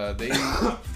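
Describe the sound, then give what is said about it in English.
A harsh cough with a raspy throat-clearing quality, heard as a couple of rough bursts in about a second, fairly loud. “And I apologize for my coughing over here, ladies and gentlemen.”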